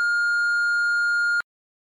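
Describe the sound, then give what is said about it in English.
A voicemail beep at the end of a voicemail greeting: a single steady electronic tone holds for about a second and a half at one pitch, then cuts off abruptly into silence. “Please leave your name and number at the beep.”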